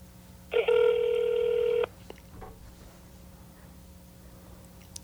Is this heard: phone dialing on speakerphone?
yes